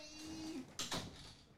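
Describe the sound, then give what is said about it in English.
A door is pushed shut, a brief creak followed by two quick, solid knocks as it latches, then a faint hum settles back in. “Let me close this door real quick.”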